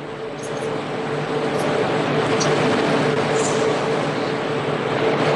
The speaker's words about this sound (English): Well, we've got the freight train coming through again. Crazy. Yeah, sorry, it sounds like a train just came through.